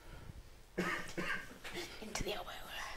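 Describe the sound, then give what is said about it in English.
A muffled cough into an elbow, with a few smothered bursts in quick succession, breathy and dampened. “The elbow. Silent cough.”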